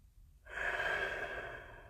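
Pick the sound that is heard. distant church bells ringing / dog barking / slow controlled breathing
slow controlled breathing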